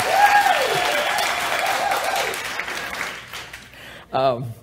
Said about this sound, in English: So she deserves a much bigger applause than that for being married to me.